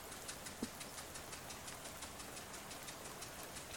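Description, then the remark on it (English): A bus engine idles in a steady, low rumble with a quick, regular chugging pulse running through it, fairly quiet and unbroken, with no voices. “All right, we're on the bus.”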